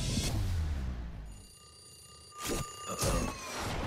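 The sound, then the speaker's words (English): An alarm clock rings with a steady, high-pitched electronic tone that starts partway through and keeps going, broken by a couple of loud thuds near the end. “Yeah, fuck alarm clocks.”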